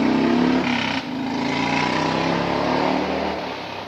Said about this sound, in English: It gets to a point where it's like, yo, for some odd reason, like everybody with a loud truck or a loud motorcycle wants to come down my street every day.